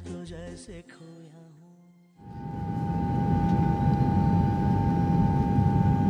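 A short musical phrase fades out, then a steady, loud airplane cabin drone takes over: a continuous engine rumble and hiss with a faint, constant whine, and no one talking.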